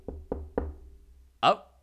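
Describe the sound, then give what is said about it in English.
Three sharp, evenly spaced knocks on a door ring out, each with a short hollow decay, followed a moment later by a brief vocal exclamation. “Got another knock.”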